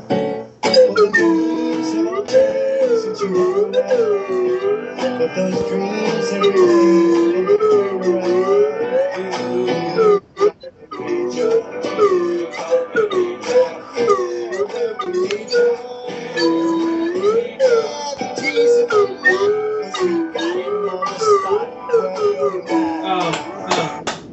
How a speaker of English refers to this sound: Oh, that is beautiful. Bravo! Bravo! That is one mean slide whistle, sir.